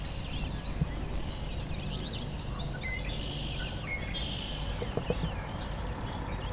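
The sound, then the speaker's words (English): Rapid, buzzy song of marsh wrens with repeated rattling trills and sweeping chirps, several birds overlapping, over a steady low rumble of background noise. “I've got some marsh wrens vocalizing.”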